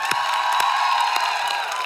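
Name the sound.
audience cheering and whooping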